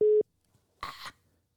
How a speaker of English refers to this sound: I don't know what happened. Okay. No, you're good. So we had a little technical difficulty, folks. I don't know. Our phone just kind of hung up.